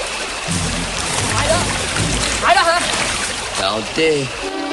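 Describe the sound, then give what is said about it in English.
Steady splashing and sloshing of water as Rambo and the prisoner Banks head along a river, with brief murmured voices rising over the moving water near the end. “Rambo and Banks head along the river.”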